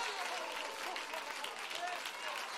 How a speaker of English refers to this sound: Come on, I wish you would stand to your feet and clap those hands to the Lord.